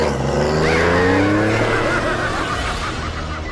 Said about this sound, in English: And black pickup trucks driven by lunatics chase innocent teenagers over the pothole-ridden pavement.